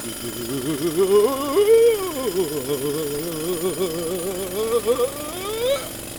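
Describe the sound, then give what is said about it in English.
A drill grinds steadily through rock, boring a hole, its motor whining and wobbling in pitch over a rough, gritty rumble, continuous, with the whine climbing near the end. “Finish your hole, giant.”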